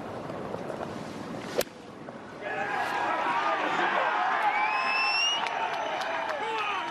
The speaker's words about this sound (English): Huge crowds here, and they are cheering for Shane Lowry, but they are cheering for everybody here.